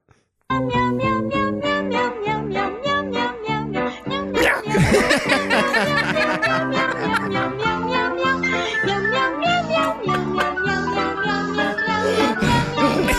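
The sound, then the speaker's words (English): A bouncy commercial jingle for Meow Mix cat food where voices sing a rapid, steady string of meows in place of lyrics, imitating a cat, loud over a backing tune for the whole stretch. “I like how they run out of breath while they're singing this song. Meow meow meow meow meow meow meow meow meow meow meow meow.”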